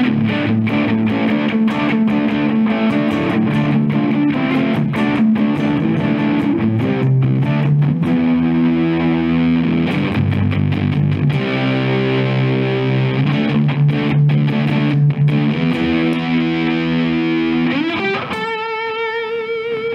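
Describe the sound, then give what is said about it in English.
A loud, distorted semi-hollow electric guitar plays a chord-driven riff through a distortion pedal set to mid-level distortion with the filter fully open, bright open tone and sustained notes, continuous, ending on a held chord with a shimmering, effected quality. “We'll do a mid-level distortion, but this is all the way opened up.”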